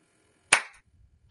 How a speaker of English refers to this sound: That was the exact clap I was looking for.